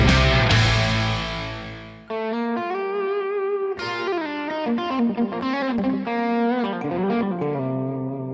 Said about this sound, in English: You know, growing up a metalhead and then just getting into these kind of more subtle guitar tones. I just love it. It's fun. It's beautiful.